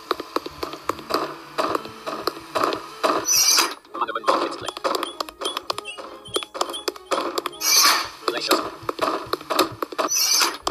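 Video game footstep sound effects: a fast, steady run of short, crisp taps and patters, with occasional high squeaky chirps mixed in, fairly loud and continuing almost the whole time.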